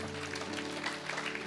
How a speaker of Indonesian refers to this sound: Boleh tepuk tangan kita begitu.